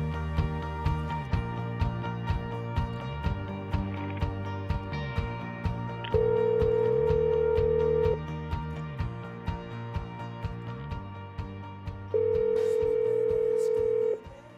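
A phone call being placed to a language arts teacher at West Middle School: a run of short electronic dialing tones, then two long, steady ringback tones separated by a pause. The sound is clear, with no voices.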